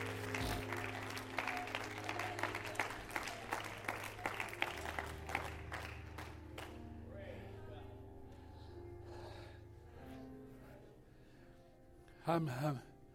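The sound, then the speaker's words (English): An audience stands and claps hands in praise to Jesus in a steady, rhythmic beat over a low sustained drone, the clapping thinning out after several seconds before a voice rises briefly near the end. “Everybody stand to your feet and clap your hands and shout out some praise to Jesus.”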